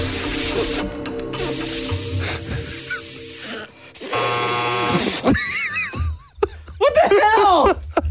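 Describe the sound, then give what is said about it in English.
Loud, steady hissing of air rushing out as someone tries to blow up a balloon, coming in several long bursts, with squeaky voices and laughter breaking in toward the end. “this balloon's not blowing up”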